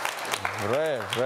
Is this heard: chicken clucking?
no